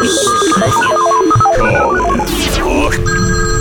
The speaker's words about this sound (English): Let's go ahead and, play our little jingle.